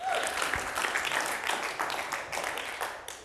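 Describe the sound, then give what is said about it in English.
An audience in a Black church bursts into sustained applause, giving God a hand clap of praise: dense overlapping hand claps holding steady and loud for several seconds before tapering off slightly at the end. “Now put your hands together and give God a hand clap of praise.”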